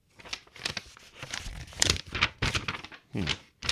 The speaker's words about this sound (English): I am making paper sound effects as if I'm turning over, rustling with, and holding out at arm's length to see if I'm missing something. An electronic mail, which I didn't actually print out, so this is all theater of the mind.